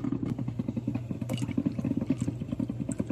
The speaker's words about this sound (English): It's a Black & Decker. I mean, it's a good coffee maker. It's just so freaking, it's so loud. Ooh, that's a good coffee maker. It's just too loud, babe.